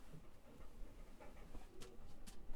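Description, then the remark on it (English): A female dog pants with short breathy huffs that grow more distinct near the end, over a low background hum. “I don't know what the dog wants.”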